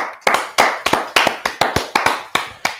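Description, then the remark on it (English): A short burst of applause for Liverpool Football Club: about a dozen sharp, crisp hand claps in a steady, slightly uneven rhythm, fairly loud, with no voices. “But right now, a round of applause to Liverpool Football Club, please, for giving Sven Göran Eriksson his wish.”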